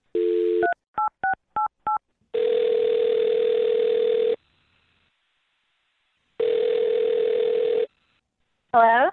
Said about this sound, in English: All right, I'm going to dial her number right now.